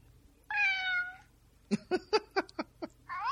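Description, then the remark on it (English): A cat meow plays from a phone speaker via an app called Cat Call, which has about 12 different meows: one long, rising-falling meow, then a quick run of six short chirping mews, and another meow starting at the end. No talking. “No, but it has, like, I think 12, maybe 12, 12 different meows.”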